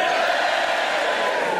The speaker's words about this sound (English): Genuine anger in that cheer.